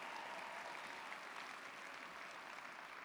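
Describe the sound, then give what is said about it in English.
A crowd applauds steadily, a dense, even wash of many hands clapping at a constant level for the whole stretch, with no voices standing out, clapping because the company was featured in Forbes magazine. “You can really clap that we were featured in Forbes magazine.”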